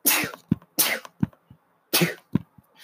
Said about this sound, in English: Excuse me, I'm about to sneeze.